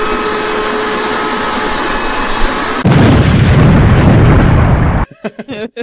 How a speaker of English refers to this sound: So, like maybe the sound of like a hand going into a garbage disposal. Hey. or like a vacuum cleaner exploding.